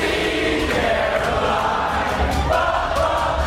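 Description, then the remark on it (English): Hundreds of college students, hunkering down as a tornado barrels over them, sing together in a loud, steady, blended chorus, with a heavy low rumbling roar running underneath the whole time and no individual speech standing out. “Plus, hunkering down, hundreds of college students singing as a tornado barrels over them.”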